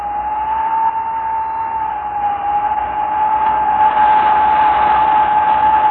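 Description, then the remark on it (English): On a cold night, wind whistles down the automatic elevator shafts of Jesse Towers, a 32-floor steel, aluminum and glass building in a city: a single steady, piercing tone over a broad airy rush, swelling slightly louder in the second half and never pausing. No voices. “For example, on cold nights, the wind whistles down the automatic elevator shafts. A lonely, piercing sound.”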